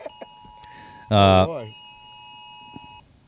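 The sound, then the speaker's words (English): A steady, high electronic Amber Alert test tone from an Apple phone drones for about three seconds, cut across by a brief loud burst of voice near the start, then ends abruptly. “There's an Amber Alert.”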